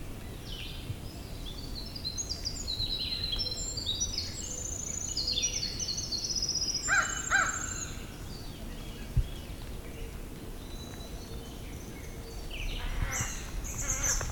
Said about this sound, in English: Quite a bit here. Morning dove, vireos. Gray catbirds. Crows.